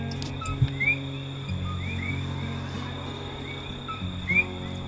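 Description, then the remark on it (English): Tree frogs singing near the Kilauea volcano on the Big Island of Hawaii, in short, rising chirps that repeat every second or so over a steady drone of insects and low hum, with no voices present. “Tree frogs singing near the Kilauea volcano.”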